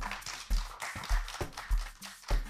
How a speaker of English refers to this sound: Can we clap?